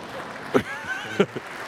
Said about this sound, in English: Thank you. You can applaud. The more you applaud, the better I feel about myself. So continue on.